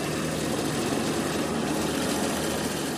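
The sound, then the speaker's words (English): A heavy diesel engine rumbles steadily from a road grader leveling a two-lane highway in central Laos, near a major tributary of the Mekong River, for the Nam Theun II dam project; a loud, continuous drone with a gritty low throb and a broad hiss above it, no voices. “In central Laos, a road grader levels a two-lane highway near a major tributary of the Mekong River.”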